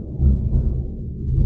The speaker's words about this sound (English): Did you hear that thunder? Dude, I thought that was like a Reaper from Mass Effect.